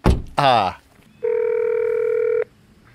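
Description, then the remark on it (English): A short thump and a brief warbling vocal-like sweep, then a steady electronic telephone tone sounds for about a second, fairly loud, before cutting off abruptly, from a phone at an empty guardhouse by a gate with a Dominion Energy sign. “It's empty, but there's a phone.”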